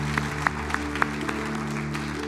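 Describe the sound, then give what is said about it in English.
A church audience stands and claps in a dense, steady wash of applause, a few sharper claps popping out early on, over a sustained low tonal drone like a held keyboard chord. “Would you clap as you stand with me?”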